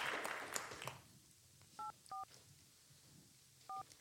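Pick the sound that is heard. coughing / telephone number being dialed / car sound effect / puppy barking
telephone number being dialed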